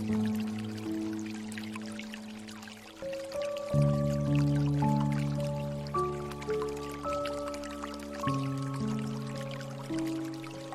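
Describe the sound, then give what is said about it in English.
Gentle water drips and trickles patter steadily beneath soft, sustained 432 Hertz piano chords that shift slowly, the liquid sounds light and partly blended into the music. “As we begin this meditation with the 432 Hertz piano and water sounds, set your intention to let go of any stress and experience true happiness within.”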